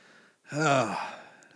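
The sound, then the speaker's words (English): A single yawn, a breathy, drawn-out voiced exhale lasting about half a second that swells and then trails off into quiet breathing, with no talking around it. “Keep yawning.”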